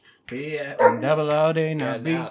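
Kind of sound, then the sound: animal, dog barking and howling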